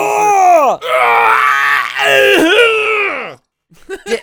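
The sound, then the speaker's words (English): A voice imitates the loud, strained grunting and yelling of men lifting light weights at a gym: long, harmonic groaning bellows in a few sustained bursts, straining and wavering, followed by a brief pause and some softer breathy sounds. “Dudes will come in and then work out right behind them in front of all the mirrors and just yell constantly with low amounts of weights.”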